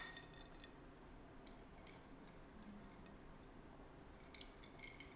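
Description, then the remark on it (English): Light clinks of wine glasses sound a few times against a steady background hum, brief and fairly faint, as glasses are tapped together in a toast. “All right, cheers.”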